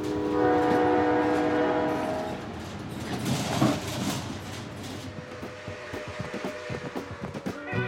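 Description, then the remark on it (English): A train horn blares for a couple of seconds, then the train chugs off from a station with a rising rush of noise and a steady rhythmic clacking of wheels, fairly loud, with no voices. “And off they chug.”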